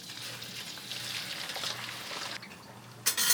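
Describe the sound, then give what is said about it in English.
Steady crackling sizzle of a batch of food frying in hot oil in a wok, a dense bubbling hiss that briefly dips then flares louder at the end. “Now our oil in the wok looks a little bit like soda water.”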